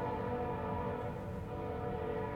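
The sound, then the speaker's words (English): A freight train rolls by on a single-track freight line that runs in and out of Philadelphia, producing a continuous heavy rumble layered with a steady droning hum that holds level throughout, with no voices over it. “That is the freight line off to my right. That's a single track that goes in and out of Philadelphia.”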